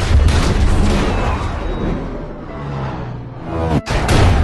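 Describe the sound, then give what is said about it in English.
A loud, dense cinematic movie explosion with deep rumbling booms and crackling debris, sustained, followed by a brief whoosh and a sharp cut before another blast surges back in. “Hello, Ryan Reynolds here, and I'd like to talk to you about a cause that is near and dear to my heart. Movie explosions.”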